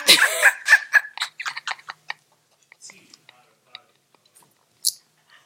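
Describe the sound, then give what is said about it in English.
A quick series of sharp, high bird chirps, dense at first and then thinning into scattered, fainter peeps with a louder final chirp, with no talking over them. “You hear that? Birds are chirping.”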